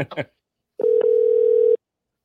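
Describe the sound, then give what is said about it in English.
A phone ringing out on the line while calling back a caller: a single steady electronic ringback tone, about a second long, clear, after a brief burst of voice at the start. “This is whoever called in. I'm calling back.”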